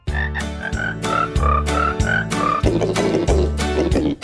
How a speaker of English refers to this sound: Now, who has better music than The Pet Show? Come on, you're not going to hear this anywhere. Where else are you going to hear crickets singing Christmas carols?